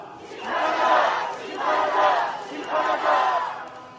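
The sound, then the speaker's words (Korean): A crowd chants a Korean protest slogan in unison against the Yoon Suk Yeol government, accusing it of scrapping anti-Japan policy and calling on patriotic citizens to judge it. Three loud rhythmic bursts of many voices shouting together, each swelling and fading in a steady repeating cadence. “구호를 외치겠습니다.”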